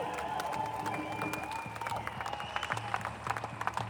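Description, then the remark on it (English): A crowd breaks into sustained applause with cheers and whistles mixed in, the clapping dense and steady throughout, with some sharper individual claps standing out toward the end. “Give her a huge, huge round of applause.”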